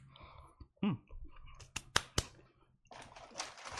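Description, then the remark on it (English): Chewing with a few sharp, crisp crunches in quick succession, surrounded by softer, wet mouth noises and a brief murmur; no clear talking. “Tell them what you got for UU Plus Solos this week while I'm chewing this.”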